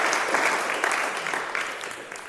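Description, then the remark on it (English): Steady audience applause for the evening's panelists fills the moment, a dense wash of many hands clapping at fairly even loudness, tapering slightly toward the end with no voices over it. “If you could please give a round of applause for our panelists tonight.”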